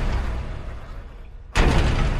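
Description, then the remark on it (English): Low rumbling background noise gives way to a sudden, loud crash as a door is struck hard, followed by a sustained burst of harsh noise. “This door is not gonna hold.”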